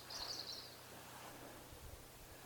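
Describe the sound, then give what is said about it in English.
Faint, high bird chirps twitter briefly near the start in the quiet churchyard of a disused church above Ponta Dowie, then fade into a soft, steady outdoor hush with low rumble; quiet, with no one speaking. “So here it's quiet apart from the birds.”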